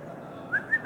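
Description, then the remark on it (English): A person whistles a quick call to summon someone: a few short, rising chirps, fairly clear, over a faint steady background hum with no talking. “So God kind of whistles for Pharaoh and says, let's see if we can't make the sea more appealing.”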